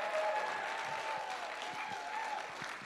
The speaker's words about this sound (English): One more. Come on. You got a hand clap in you.